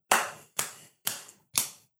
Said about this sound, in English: And then everybody clapped. Yes, we did indeed clap.